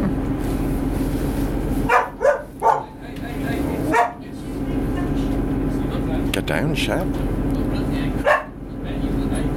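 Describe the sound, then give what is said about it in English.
A dog, not the speakers' own, barks in short, sharp bursts: a quick cluster of three, then single barks spaced irregularly, over a steady low background rumble. “It's not Basil, by the way, Pea Supers. It's not our dog.”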